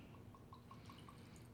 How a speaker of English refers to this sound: So I think right, I'm going to pour mine up at one finger.